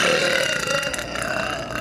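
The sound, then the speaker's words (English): A woman's long, loud, drawn-out burp rumbles for nearly two seconds during her food review, with a steady throaty buzz and no talking around it. “She breaks up her review with some burps.”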